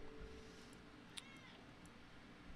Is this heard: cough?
no